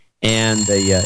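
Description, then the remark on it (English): A loud, sustained electronic telephone ringing tone starts abruptly after a brief silence and holds steady for about a second, bright, with a slight warble partway through. “And we're getting calls now. The phone banks are blowing up, everybody.”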